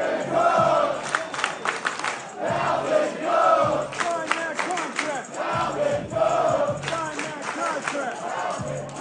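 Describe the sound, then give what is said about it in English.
A large crowd at the Jets facility chants Dalvin Cook's name in unison as he walks on the field, rhythmic rising and falling shouts repeating steadily throughout, loud and dense with many voices, a few claps mixed in. “The crowd was chanting his name when he walked on the field.”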